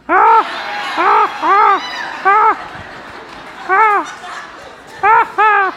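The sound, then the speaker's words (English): A crowd of women grunt together on a count of three, imitating Tim Taylor's grunt from the show Home Improvement: about seven loud, rising-and-falling grunts in an uneven rhythm, with a murmuring crowd in between. “On the count of three, ladies are gonna grunt.”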